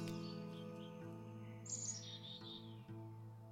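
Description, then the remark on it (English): Birds chirp in a backyard in a short burst of bright, high tweets near the middle, over a steady low droning hum that runs throughout. No one speaks. “These sermons are filmed in the place I'm lucky enough to call my backyard, so you might hear the sounds of birds, geese, roosters, trains, and wind, and sometimes my sweet pup Indy.”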